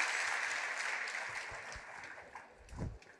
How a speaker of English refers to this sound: And put your hands together and give the Lord a hand clap of praise today.